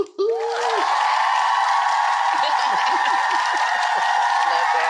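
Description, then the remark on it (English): Steady, loud applause runs unbroken for the full length, a dense wash of clapping with a short rising whoop near the start. “It's a very, very long applause.”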